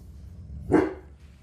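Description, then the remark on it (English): A single sharp bark from Roy, a dog that barks at anything, short and fairly loud, over a low steady background hum, with no one speaking. “This dog barks at anything. Stop! Stop.”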